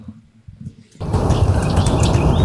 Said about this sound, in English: It's hard to see where the ruby-crowned kinglet might be because they're kind of quiet, but let's go through here and see if we catch it. So in the background, you can hear some of the warbly sounds of the ruby-crowned kinglet.